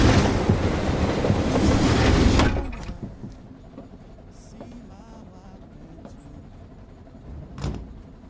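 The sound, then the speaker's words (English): A night train rumbles loudly along the tracks for a couple of seconds, then drops to a quieter, steady rolling hum with faint clicks and a brief swell near the end. “We're stowaways! We're on the night train?”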